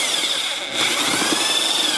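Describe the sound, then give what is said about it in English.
A power drill fitted with a 5-gallon paint mixer paddle runs steadily with a high, sustained motor whine, churning thick joint compound to a creamy consistency in an empty bucket, with a brief dip in the noise before it resumes. “You get a 5-gallon paint mixer thing. Put some in an empty bucket.”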